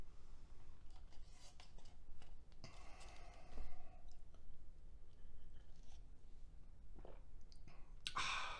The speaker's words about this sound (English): I'll take a sip of coffee while you do that.